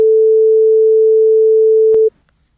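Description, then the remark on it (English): A loud, steady phone tone hums continuously for about two seconds, then a sharp click cuts it off and silence follows. No one speaks. “End call.”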